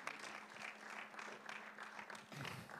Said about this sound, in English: And give him a round of applause as he comes and shares.